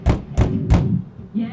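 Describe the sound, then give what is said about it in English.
Three firm, evenly spaced knocks on a door, each a dull thud with a sharp attack, followed by a brief murmur of a voice at the end. “Let's just knock.”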